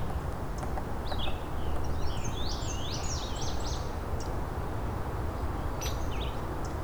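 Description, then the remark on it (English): Songs of an indigo bunting and a scarlet tanager, a run of bright, slurred phrases, then a brief later snatch, over a constant low rumble of outdoor background noise. “Here's an indigo bunting and a scarlet tanager.”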